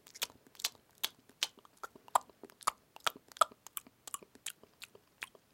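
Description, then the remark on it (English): A voice imitates crunching blue corn tortilla chips with a quick, irregular run of sharp, crackly bursts, about two dozen over several seconds, with no words spoken. “Can you make the blue corn tortilla chip sound with me?”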